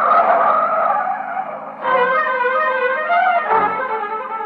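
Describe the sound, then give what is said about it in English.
A car's tires squeal in a long, loud skid as the engine revs hard and the vehicle tears away, the screech wavering in pitch for several seconds. “You keep saying things you shouldn't, and she lashes out with an answer, and before you know it, you've stormed out of the house, and you're taking it out on the car.”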